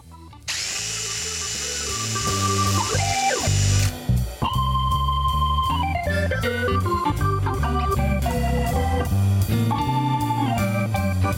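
A power drill whirs loudly and continuously for about ten seconds, its motor pitch rising and dropping repeatedly as the trigger is squeezed and eased, with no voices.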